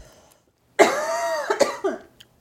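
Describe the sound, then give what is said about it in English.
A strained cough that stretches out, followed by a few quick, choked bursts, as if someone is trying to hold back a coughing fit. No one speaks. “It's just because I really need like to have a coughing fit, but I don't want to interrupt this.”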